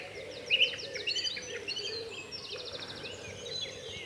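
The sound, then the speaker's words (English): An agitated moorhen calls in sharp, repeated bursts, with rapid chattering runs and other birds chirping around it, set against a steady outdoor background hum. No one speaks. “I'll pause here for a moment. Beside the agitated moorhen.”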